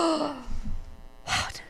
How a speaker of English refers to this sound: Gasp.